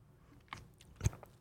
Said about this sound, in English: Right now I'm crushing some Beans Coffee Company. I'll take a sip right now.